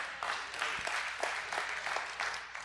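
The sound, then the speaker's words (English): An audience claps together in response to the speaker using the word "keister", a dense wash of many hands applauding steadily for a few seconds, with no voices standing out. “You clapped because I used the word keister.”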